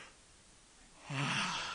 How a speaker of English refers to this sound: Okay. Now we all feel better. Anybody else want to yawn while we have the opportunity?